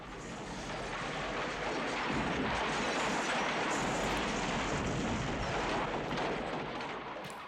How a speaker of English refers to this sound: Here comes a big explosion.